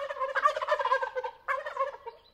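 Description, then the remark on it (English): Wild turkeys gobble at dawn just outside Patagonia, Arizona, as they leave their night roost in a tall sycamore tree to find food, in a rapid, rattling burst, followed by a second shorter gobble after a brief pause, fairly loud with no talking. Recorded by Lang Elliott for his Music of Nature series. “It's dawn, and the wild turkeys who roosted all night in a tall sycamore tree are heading off to find breakfast and making sure everybody knows about it.”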